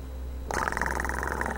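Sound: cat purring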